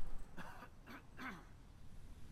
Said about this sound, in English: And excuse me that I keep clearing my throat. I'm out here and I think my allergies are starting to jump in.